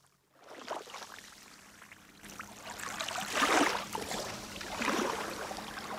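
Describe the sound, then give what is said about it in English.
Small, gentle sea waves of clear turquoise water lap at a beach on Inishlacken, rising in soft washes every second or so with a faint trickling fizz between them and a low steady hum underneath. “I'm looking at water which is cobalt turquoise, and you can hear it lapping, nice gentle little waves, and you can see way out, and the water is crystal clear.”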